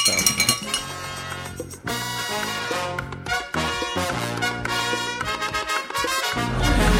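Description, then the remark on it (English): An official rings a metal hand bell continuously for several seconds, a loud, bright, rapidly repeated ringing with a dense metallic tone and no voices. “So I think I see the official warming up that bell hand.”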